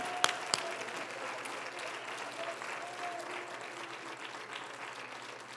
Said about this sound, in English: If you want his name this morning, clap your hands and give him praise right now.